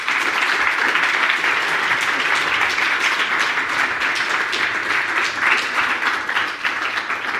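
A crowd applauds steadily, many hands clapping together in a dense, sustained wash of sound that stays fairly loud and even throughout, with no one speaking over it.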